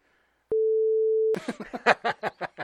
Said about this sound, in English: You're gonna beep that out.